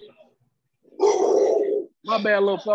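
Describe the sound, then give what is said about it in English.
A rough growl rumbles for almost a second, then after a brief pause a riled-up dog lets out loud, tonal barking sounds that trail off. “You got the dog all riled up.”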